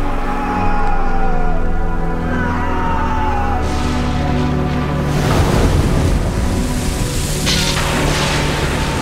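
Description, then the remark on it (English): Loud, churning sea waves crash continuously while gusty wind roars over them, forming a dense, stormy wash of noise with a low musical drone underneath and no voices. “He got up, rebuked the wind, and said to the waves, "Quiet! Be still!"”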